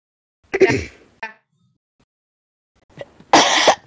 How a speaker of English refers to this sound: I'm sorry if I'm coughing a lot.